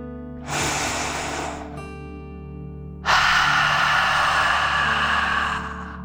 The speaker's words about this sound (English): Remember to breathe in through your nose, filling up your lungs, and breathe out through your mouth, pretending you are breathing fire. Ready? Take a deep breath in and out.